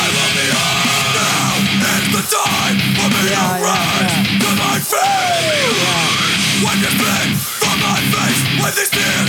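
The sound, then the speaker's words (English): A loud, dense hardcore punk song blasts with harsh screamed vocals over distorted guitars and pounding drums, steady and aggressive, with a couple of brief breaks in the wall of noise. “He's all screaming into the microphone.”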